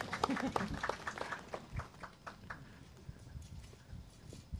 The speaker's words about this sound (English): And I'm going to ask you two guys to help me. Come. Easiest applause you're ever going to get.